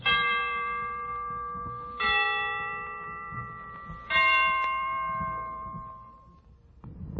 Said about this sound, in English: Now I'm all set. The Christmas bells can ring anytime they're ready. Well, I imagine they're ready now. Let's listen.